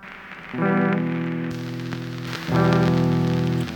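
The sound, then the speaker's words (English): Guitar processed with an old vinyl record effect: two sustained chords ring out over a steady bed of crackle and hiss, giving a dusty, lo-fi sampled character. “So this old vinyl sound is interesting because it makes the guitar sound like an old sample.”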